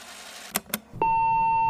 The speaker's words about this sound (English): Please, leave your story of rad strangeness, and Woody and Tyler will get back to you as soon as possible. Listen for the beep